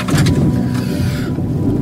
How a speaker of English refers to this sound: Foreshadowed by thunder.